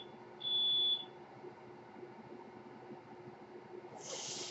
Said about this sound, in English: Sounds like we have a bad battery in a smoke alarm. Well, just a moment. I'm going to pause, and I will be back immediately. Okay, I'm back. It's a smoke alarm. Sounded like it had a low battery.